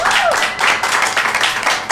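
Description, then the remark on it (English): A crowd at a live show applauds steadily for two guests, a dense wash of many hands clapping at once, with a brief voice or whoop sliding downward at the very start. “So before we get into the games and prizes portion of this show, I want to give one more round of applause for both of our guests.”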